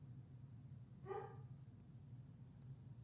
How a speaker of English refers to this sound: I heard a bark.